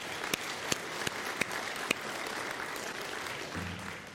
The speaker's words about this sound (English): Thank you to the worship team. Please applaud with me for them.